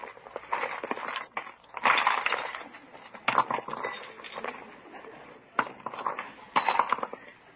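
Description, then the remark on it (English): Items being emptied out of a purse to change purses, among them lipstick, a compact, house keys, a pillbox, a fountain pen and a flashlight: irregular bursts of rustling, rattling and light clinks of small hard objects, with short pauses between handfuls and no talking. “Well, I just have to take time to change my purse.”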